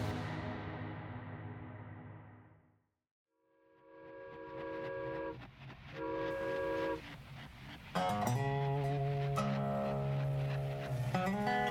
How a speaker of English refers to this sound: The next morning in the vast desert surrounding cremation, a train slowed as it approached a block in the tracks.